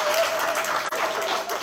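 A church audience applauds steadily, many hands clapping in a dense, even wash of sound with a brief dip partway through, then continuing at the same strong level.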